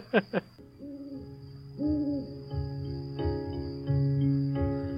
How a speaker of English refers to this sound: For example, if the baby woke up and was crying. And in this routine, it triggers lullaby music. Or I guess it's crickets and lullaby music.